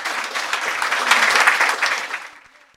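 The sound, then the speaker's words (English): An audience claps steadily for the presenters in dense, crackling applause that swells briefly, then thins and fades out over a few seconds. “A round of applause, please, for our presenters.”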